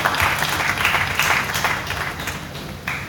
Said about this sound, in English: All right. All right, let's clap for everybody that has spoken.